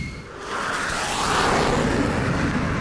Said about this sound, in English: A button that ignites the roar of a jet engine from deep in the Batcave.